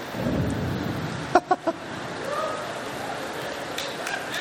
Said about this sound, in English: If it thunders and it rains, I'm all cool.